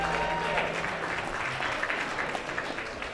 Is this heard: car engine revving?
no